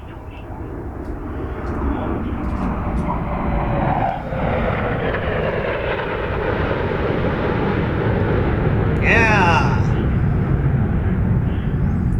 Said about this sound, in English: good sound. I like hearing that. The sound of freedom, airplanes.